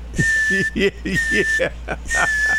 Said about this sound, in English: There's the air brakes.